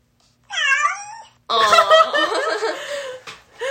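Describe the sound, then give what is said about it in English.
Two cat-shaped toy buzzers, pressed in a game of guessing which Disney movie a quote is from, meow one after another, loud: first a short, clear meow, then a longer, busier one with people chuckling and laughing over it. “And once we think we know, we are going to press our cat buzzers.”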